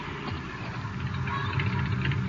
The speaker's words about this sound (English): There's a car coming. Could be them.